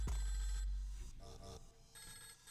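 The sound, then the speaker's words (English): A telephone rings in the background with a bright, repeating electronic trill, fairly loud and steady through the whole stretch with no talking over it. “It's like I walked into a phone company and every phone was ringing randomly.”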